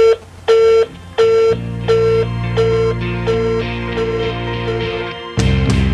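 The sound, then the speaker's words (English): A telephone busy signal from the Westvleteren monks' old beer phone beeps in steady, evenly spaced pulses, loud, with a low hum underneath and a brief burst of noise at the very end. “And so, along with the monks at Westvleteren, and with all other beer romantics out there, I'll bid farewell to our old friend, the beer phone, with one last busy signal.”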